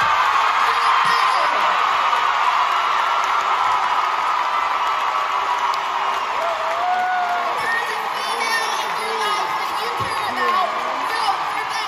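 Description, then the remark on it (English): A large crowd at a rally for Beto O'Rourke screams and cheers continuously, a dense, loud wall of voices with whoops and yells rising out of it, at full volume. “So they're screaming, vote for Beto.”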